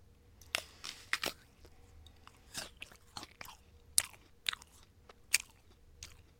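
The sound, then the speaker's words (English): Crisp crunching and wet chewing of an apple, with sharp irregular bites and smaller munching sounds spread over several seconds, no talking. “That's a good apple.”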